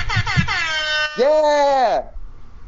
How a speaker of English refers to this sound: Yeah! Rap air horns. Fuck yes. Yeah, I downloaded an app on my break, so yeah. That will be coming into use.